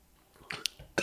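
A few short, breathy coughs sputter out after a sip of a drink goes down the wrong pipe. They are quiet and uneven, the last one a bit harsher, with no talking.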